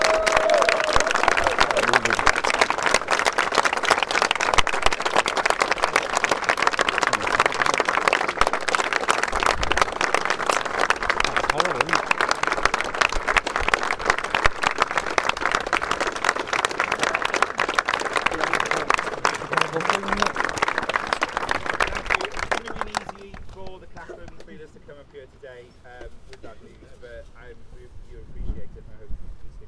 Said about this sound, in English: just to mark his life and just to celebrate him. I think we just want a few moments of applause for his life.